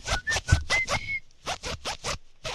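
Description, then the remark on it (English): Lip buzzing at a microphone traces a pop song played on the radio in a quick run of about ten short, raspy pulses, with a brief pause partway through and a few thin whistly tones early on. “lips are at the microphone.”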